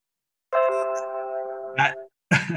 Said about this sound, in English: The Heavenly Chime. The Heavenly Chime. See, I think my computer's telling me I win.